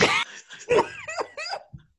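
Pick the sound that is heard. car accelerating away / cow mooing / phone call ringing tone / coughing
coughing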